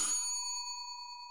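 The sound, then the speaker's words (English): A single bright bell chime of a doorbell, struck once and then ringing on as a steady metallic tone that slowly fades, with no voices. “Right on cue, the doorbell rang.”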